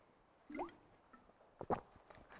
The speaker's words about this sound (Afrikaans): En dan sê hy, excuse, nou verstik ek, en gaan slik water vat.